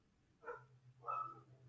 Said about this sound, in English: That's... Dog.